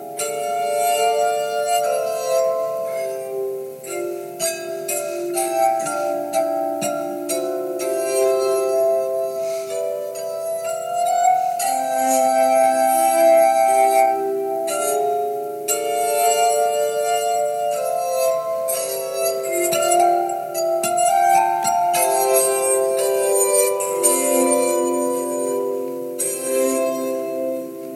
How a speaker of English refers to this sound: Mozart also wrote a piece for glass harmonica, and I'll give you a little taste of it.